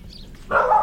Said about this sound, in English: Oh, and a dog. So there is some noise.